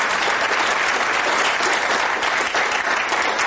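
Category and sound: crowd, audience round of applause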